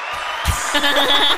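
A burst of applause sound effect kicks in after a brief lead-in, a steady wash of clapping with what sounds like cheering voices rising over it.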